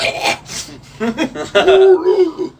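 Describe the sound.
A person vocally imitates a kraken's roar: a few breathy, rasping hisses give way to a rough, wavering groan that swells louder, then trails off.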